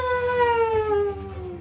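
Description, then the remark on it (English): A single wolf howls in one long, sustained note that slowly slides downward in pitch, loud, with nothing else heard alongside it. “As you pick up the bow, wolf howls.”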